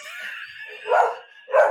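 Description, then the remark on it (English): A dog gives two short, loud barks about half a second apart, preceded by a thin, high-pitched whine. No voices are heard. “Well, the dog was kind of ruffling me, his feathers.”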